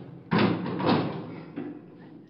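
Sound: door being opened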